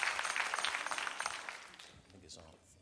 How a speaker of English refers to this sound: But she has done a tremendous job over her first 6 months, now 7 months on the job, and we applaud her. Come on, let's thank God for Judge Hidalgo one more time.